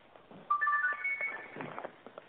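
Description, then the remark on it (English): A phone ringtone plays a short melodic phrase of bright electronic tones, moderately loud, with faint background noise and brief indistinct voices around it, ringing during a live radio broadcast. “Okay, that's your phone.”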